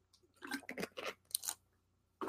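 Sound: drinking water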